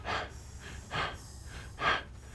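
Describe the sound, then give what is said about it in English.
Heavy, rasping breathing through a gas mask worn by the character Richard in a film: three loud breaths at a steady, slow rhythm, with a low hiss lingering between them and no voices. “And then the sound continues and we hear Richard's heavy breathing through the gas mask he's wearing.”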